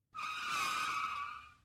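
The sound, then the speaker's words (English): A loud, sustained screech of car tires skidding on highway pavement under hard braking, lasting about a second and a half before cutting off abruptly. “Virat slammed hard on the brakes.”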